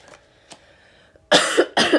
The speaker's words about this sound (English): Excuse me. I'm sorry about the coughing. I don't mean to cough in your ear. I don't mean to cough in the speaker. I don't mean to cough in your ear.